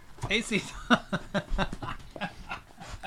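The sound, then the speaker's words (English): A dog pants and whimpers, with quick irregular bursts of breathy huffs and high, thin whines running through three seconds of noisy background. “We have been invaded by dogs”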